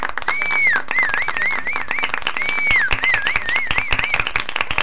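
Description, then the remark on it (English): A round of crowd applause, dense steady clapping lasting about five seconds, with shrill wavering whistles rising and falling twice over the top. No one speaks. “I think this calls for a round of applause.”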